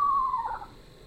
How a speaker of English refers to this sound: We have a lot of Eastern Screech Owls around here.